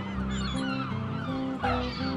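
Seagulls swooping overhead by the sea at sunrise, in a breeze, squawk loudly and repeatedly, their harsh, overlapping cries filling the air without pause over a steady background, with no one speaking.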